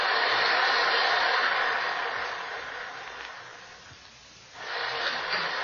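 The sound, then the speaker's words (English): Heavy red rain pours in a dense, steady hiss, dipping to a softer wash around the fourth second before surging back to full strength. No voices are heard. “And the rain. Look at the rain.”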